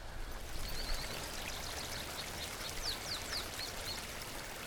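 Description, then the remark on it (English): A steady, gentle wash of Frijoles Creek flowing over rocks along a canyon bottom in Bandelier, through a forest of ponderosa pine, Douglas fir and gambel oak, with faint high bird chirps scattered above it. Soft and continuous with no voices. “Frijoles Creek runs through a beautiful forest of old ponderosa pine, Douglas fir, and gamble oak along the canyon bottom here in Bandelier.”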